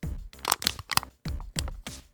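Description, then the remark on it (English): An aluminum can is crushed in a few loud bursts of crinkling, crackling metal, with short pauses between squeezes and no talking. “Well, you give us a sip, and then I'll close it off with a canned crumple.”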